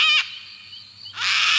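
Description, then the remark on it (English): Harsh, raspy sulfur-crested cockatoo screeches ring out loud: a short burst at the start, a pause with a faint low hum, then a longer grating screech. No one speaks. “That's because most sulfur-crested cockatoos are left-footed.”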